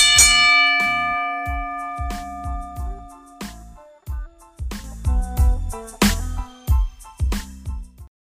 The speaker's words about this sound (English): Let's get this show started. Ring the bell.